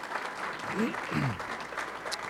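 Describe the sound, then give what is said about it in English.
A crowd claps in a steady, dense wash of applause for a couple of seconds, with a few faint voices and cheers rising briefly through it. The applause is at a church service, thanking a couple for sharing that morning. “Well, will you all join me in giving a round of applause, thanking these folks for sharing this morning?”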